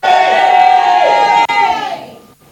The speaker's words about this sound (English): Give the Lord a shout of praise.